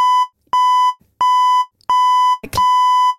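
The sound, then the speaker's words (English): A refrigerator door-open alarm beeps loudly: four steady, high electronic tones repeating roughly every half second, with a short clatter near the end. “Why does your fridge beep? Now, I'm sure, like, most people's fridges nowadays, if the door's left open, there's an alarm to tell you.”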